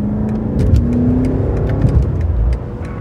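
A 2003 BMW M5 sports sedan's engine revs and accelerates steadily, heard from inside the car while driving, with a loud, continuous low rumble and a rising tonal whine, then easing slightly at the end.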